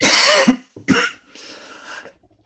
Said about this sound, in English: So I think if you press that flashing blue button on your mic, we don't have to hear you coughing.